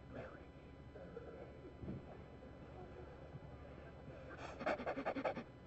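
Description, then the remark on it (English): A person mimics a dog's panting with a quick burst of about six sharp, rhythmic breaths, following several seconds of soft, breathy background noise. “like a dog.”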